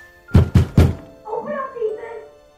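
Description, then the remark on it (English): Three loud, heavy bangs on a front door in quick succession, forceful, followed by a brief stretch of soft muffled voice-like sound. “Banging on the front door interrupts the fun.”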